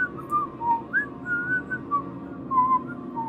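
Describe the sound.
A melodic whistled tune, like a song, drifts along in a steady sequence of wavering notes, moderately faint, coming from the western end of a tunnel, over a low rumbling background hum with no talking.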